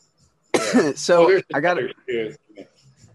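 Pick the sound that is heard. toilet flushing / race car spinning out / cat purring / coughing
coughing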